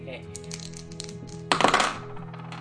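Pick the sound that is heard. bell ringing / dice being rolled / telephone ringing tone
dice being rolled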